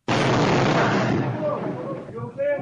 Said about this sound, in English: A woman was heading into her living room when a massive boulder crashed through the wall and missed her by just a few inches. We have security cam of the boulder crashing into the room.